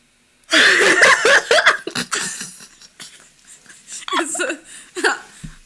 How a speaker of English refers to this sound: fully just yawned, so I think I'm boring her with the conversation. Bitch, when I tell you I was holding that yawn in for like... since we started.